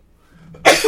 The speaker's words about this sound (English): excuse me. You don't have to say bless you. That's fine. Bless.